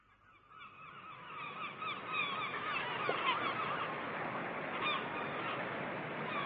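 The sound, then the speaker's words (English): A dense chorus of honking, goose-like calls from many birds by the sea rises and then holds steady, the birds calling over one another continuously with no pauses. “There are so many more birds.”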